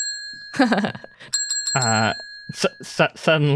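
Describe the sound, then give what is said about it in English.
A counter service bell is pressed several times in quick succession, its bright metallic ring lingering throughout, mixed with wordless vocal sounds from a person. “I'm going to walk up to the counter. There's a bell. I ring it.”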